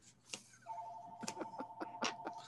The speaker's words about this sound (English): Let's go back inside. The phone's ringing now. I can hear it.